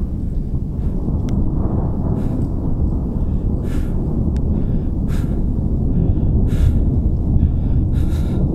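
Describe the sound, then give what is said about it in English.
A steady, muffled wash of distant rain fills the background, with faint airy bursts recurring every second or so over the constant low rumble. No one speaks. “The room is silent again. You can hear the distant rain”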